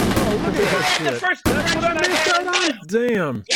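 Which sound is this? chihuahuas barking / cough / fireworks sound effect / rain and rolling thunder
fireworks sound effect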